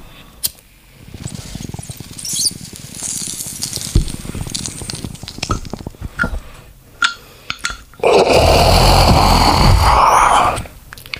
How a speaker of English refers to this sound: Now that's a fucking bong hit.